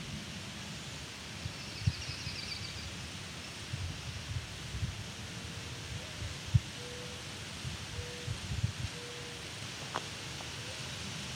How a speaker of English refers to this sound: So you can hear a mourning dove in the distance.